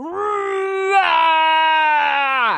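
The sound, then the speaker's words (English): A person's voice imitates the tiger Chubby Tiger roaring toward the sky in a contest of who roars loudest: one loud, sustained, strained cry lasting over two seconds, holding a fairly steady pitch, swelling briefly partway through, then cutting off abruptly. “Chubby Tiger stretched his neck and roared toward the sky.”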